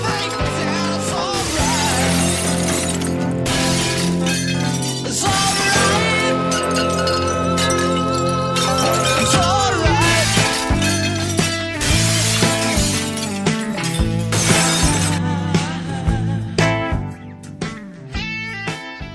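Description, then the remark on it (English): Glass is smashed in an Anger Room, a place for relieving stress, shattering in a series of crashing bursts, each leaving a tinkling spray of shards, set against a steady, loud musical backdrop that carries on throughout. “The article of the New York Times, Anger Room is a Smashing New Way to Relieve Stress.”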